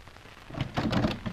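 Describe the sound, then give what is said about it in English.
A door is opened with a short run of rattling, clattering bursts over a soft rain-like hiss, with no voices. “I'll open the door.”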